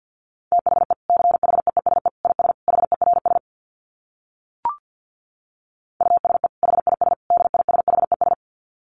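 Rapid Morse code beeps at 50 words per minute in a steady mid-pitched tone, quick dits and dahs in two bursts separated by a pause with a single short blip, no voices.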